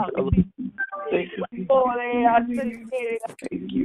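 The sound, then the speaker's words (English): A few short electronic beeps from telephone keypads being pressed to put phones back on mute during a prayer call, fairly loud, mixed in with voices speaking over a phone line. “As we place our phones back on mute again, God, we just simply say we appreciate you and thank you for another opportunity, God, to spend time in your presence.”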